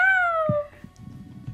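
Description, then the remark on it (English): A person imitates a cat with a single clear, drawn-out meow that slides downward in pitch, followed by a brief stretch of soft low rustling. “You could channel your inner Moxie and make cat noises.”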